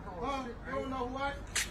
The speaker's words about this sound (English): Oh my god, that's pistol whipping.